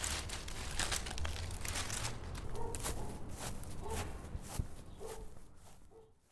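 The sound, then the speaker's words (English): Footsteps of a person walking home from a park in Seattle carrying sticks, branches and bark, a steady series of crunching steps over dry ground or leaves, moderately loud, with no one talking. “So now I have my sticks, I have my branches, and I have a little bit of bark. Okay, I'm going to head back home.”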